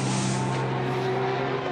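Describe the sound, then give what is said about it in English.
The number 63 Lamborghini GT race car roars loudly and steadily at high revs, heading down into turn one during GT qualifying for the Dubai 24 hours, a sustained buzzing drone with a whooshing rush of air, with no voices. “83 Lamborghini on screen. 63, I'm sorry, down into turn one.”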